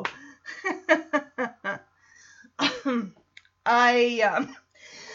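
A loud run of short coughs and throat clearing from someone with a cold, a rapid cluster of hacking bursts followed by a couple of longer, rougher clears, with brief pauses between.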